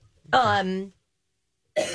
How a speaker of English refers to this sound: I'm using the cough button, but your mic is on, it's not helping me.